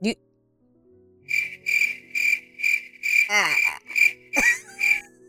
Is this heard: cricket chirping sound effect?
yes